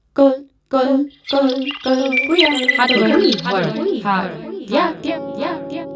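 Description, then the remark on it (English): Scratchy, electronic-sounding birdsong: a few harmonic calls, then a busy rush of buzzy whistles, warbles and clicking rhythms, loud, with no one talking. “but a kind of rhythmic, noisy, electronic-sounding, scratchy collection of rhythms and beats, much more like techno music than ancient melodies from history and literature.”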